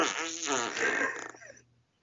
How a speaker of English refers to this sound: My farts didn't stop. And the same power of farts erupted again.